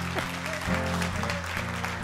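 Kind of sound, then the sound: crowd, round of applause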